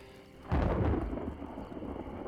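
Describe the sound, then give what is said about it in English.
Thunder breaks suddenly and close, a loud crack that rolls into a deep, lingering rumble, with a steady hiss of rain underneath throughout. “Kimura's heart sank when she heard thunder. It sounded dangerously close.”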